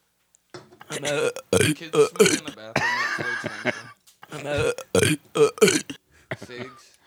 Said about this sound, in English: Dude, that one burp you did. I think I may have highlighted it in gold. Yeah, it's in gold. Dude, it's like it's a stuttering Stanley of burps. It had something to say. Listen.